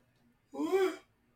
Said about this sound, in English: I'm yawning. … is... that was an aggressive yawn.